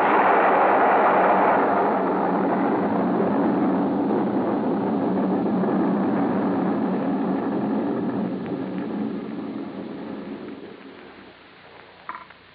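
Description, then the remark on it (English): A laboratory building explodes in a loud, rumbling roar with crackling, creaking debris that gradually fades away over about twelve seconds, leaving a faint tail at the end. No voices. “But suddenly, from inside the building came a couple of dull thuds. And then the whole thing began to bulge at the seams, began to...”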